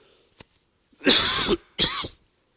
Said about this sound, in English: That's the one thing wrong with this system is, well, if you have the cough, you can make a real, like a clap of thunder.